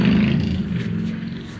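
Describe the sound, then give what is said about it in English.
A loud motorcycle engine roars steadily with a deep, throbbing growl, holding strong for under two seconds and easing off only slightly toward the end. No one speaks. “I won't rest until motorcycles like that are illegal.”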